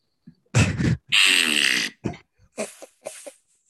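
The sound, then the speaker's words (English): Someone vocally imitates the fart the redhead kid in the film The Patriot let out as he died, a fairly loud sequence: two short sputtering bursts, one long buzzing raspberry, then a few brief trailing puffs. “That was the fart he let out as he died, as he lay dying.”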